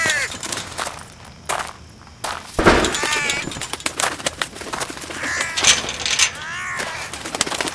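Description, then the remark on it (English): A crow calls repeatedly, sharp rasping cries coming in several bursts with brief pauses, loud against a quiet background. “All right, little bird.”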